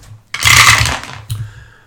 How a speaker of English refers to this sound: Yes, big dice roll this time. Let's see here. Big dice.